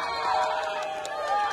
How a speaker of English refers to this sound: Demonstrators stopped to cheer because she said yes. A black couple, protesters in Philly, in the middle of the street, with him taking to one knee, proposing in front of the crowd and the riot police.